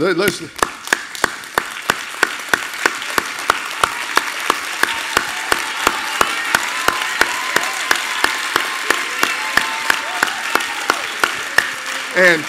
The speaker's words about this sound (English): But before we go any further, I think we ought to give this man the best hand clap, standing ovation that we can give him, because he is a great pastor.